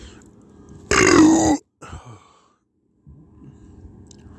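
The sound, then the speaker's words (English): A loud burp lasting over half a second, followed by a short breathy exhale, then a pause and quiet background murmur. “I just accidentally tapped off of the app doing that burp.”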